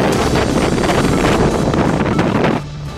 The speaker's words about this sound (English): This is Port Hardy on northern Vancouver Island, just one of several parts of the province getting hit with 90 kilometres an hour gusts today. Wind warnings in effect for many areas of BC, including east and west Vancouver Island to the central coast